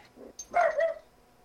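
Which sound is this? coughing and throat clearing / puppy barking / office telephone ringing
puppy barking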